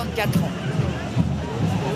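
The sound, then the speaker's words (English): Dense protest crowd hubbub fills Place de la République, many overlapping voices blending into a steady, loud murmur with no single speaker standing out, holding an even level throughout. “Further away from the seething crowds in Place de la République”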